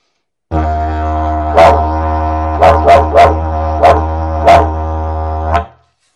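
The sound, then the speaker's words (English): A steady, low didgeridoo drone carries a series of about six or seven sharp, bark-like bursts, a traditional technique imitating a dingo, a wild dog of the outback, barking in an uneven rhythm, loud with no speech. “Traditional sound, dingo barking, a wild dog in the outback, right?”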